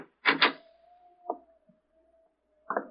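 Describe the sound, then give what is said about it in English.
A door is tried: a quick double rattle of the handle, then a long, thin, steady creak of hinges punctuated by a soft knock and a final clunk. “Try the door, Lamont.”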